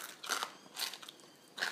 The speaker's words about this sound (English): They're so crunchy. Have you crunched out? Yeah. No, I've still got a bit left, mate. I'm keeping my last bit. I'm still munching through the pork. I'm glad I picked pork.